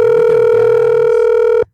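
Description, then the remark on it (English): A single steady electronic phone ringback tone of an outgoing call to a woman, loud, holding one unbroken buzz for about a second and a half before it cuts off abruptly. No one speaks. “Let's see if this lady wants to answer again for us.”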